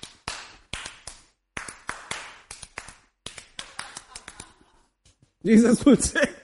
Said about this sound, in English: and you say, I feel like clapping, oh, nani chappale hodibeku anustade antu helidre, you know, I can clap.